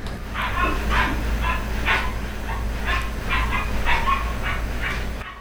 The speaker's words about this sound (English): So while Dad was spitting fire, I don't know if it was the neighbor dog or somebody's dog went off.